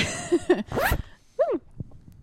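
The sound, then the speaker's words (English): A clothing zipper is pulled in a few quick, raspy bursts, fairly loud, with short pauses between the strokes and no talking. “Zipper. It's a zipper. Like pants zippers.”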